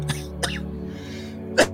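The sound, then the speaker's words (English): Three short, harsh cough-like bursts into the microphone, two quick ones followed by a louder final one after a brief pause, over a low steady hum with no talking. “I feel like when I do that, like you got the headphones on and it's like somebody just coughed all up in your ear.”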